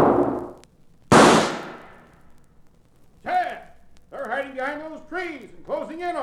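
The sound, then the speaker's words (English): Two loud carbine rifle shots crack about a second apart during a shootout, each trailing off in a brief echo, followed by several seconds of raised voices. “Come on, get that carbine out of your saddle boot and use it.”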